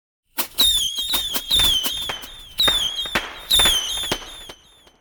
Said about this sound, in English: So, now that Diwali is coming up, I would request people to stop bursting the loud crackers.